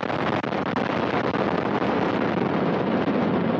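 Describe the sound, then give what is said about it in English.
A sustained, thunderous roar of Soyuz booster rocket engines at maximum thrust during liftoff of the 67th Progress resupply vehicle bound for the International Space Station from the Baikonur Cosmodrome, steady and powerful with a dense rumbling, crackling texture and no pauses. “Engines at maximum thrust. And liftoff.”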